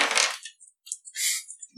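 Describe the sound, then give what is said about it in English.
Dice clatter across a hard tabletop as players roll initiative in a tabletop game: a burst of rattling at first, then a few scattered clicks as they settle, fairly crisp, with no voices. “Yeah, if you're coming down the hallway, I would say, yeah, also roll initiative.”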